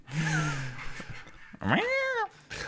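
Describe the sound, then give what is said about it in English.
A black cat meows twice, fairly loud: first a low, drawn-out moaning call, then a brighter rising-and-falling meow, with no talking. “My cat speaks the word of God.”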